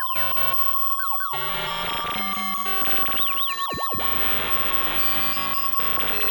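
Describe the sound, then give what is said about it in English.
A dense, chaotic wash of electronic bleeps, warbling sweeps and buzzy tones, special effects buried in the mix near the very end of a music track, like a retro sci-fi soundtrack crossed with an old dial-up modem, steady and loud throughout with no voices. “Sounds almost like a sci-fi soundtrack with an old-fashioned modem.”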